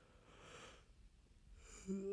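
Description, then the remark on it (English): A single quiet yawn: a long breathy inhale that trails off, then a short voiced, groaning exhale at the end. No one speaks. “Okay, that was another yawn.”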